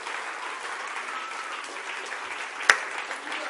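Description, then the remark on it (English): A large crowd claps steadily throughout to give thanks to God, a dense, continuous wash of many hands applauding together, with one sharp louder knock standing out near the end. “Clap your hands one more time.”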